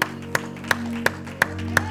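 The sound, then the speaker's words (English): An audience at a church service claps hands together in steady unison as a hand clap of praise to the Lord, six sharp claps evenly spaced about a third of a second apart, over a sustained low instrumental drone. “Let's give the Lord a hand clap of praise for his word tonight.”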